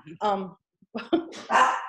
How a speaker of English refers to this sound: my dogs are going to bark because they see a squirrel. Sorry.